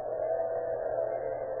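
A steady, unbroken whine from an electric grill in a small office in the Sun Mercantile Company at 616 South 7th Avenue, at 2:30 in the morning, holds a constant pitch and level for the whole stretch, with no voices over it.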